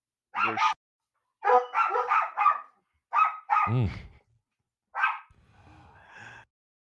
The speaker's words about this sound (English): Oh, I guess they're barking still.